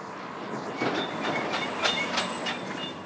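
A truck rolls past with a steady, loud rushing roar, punctuated by a quick run of rattling clanks and a faint high whine, with no voices over it.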